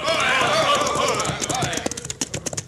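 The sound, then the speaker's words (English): Several horses ridden by a band of bandits gallop in, a rush of noisy commotion giving way to a rhythmic clatter of hoofbeats that grows distinct as they arrive. “Get down off your horses, boys.”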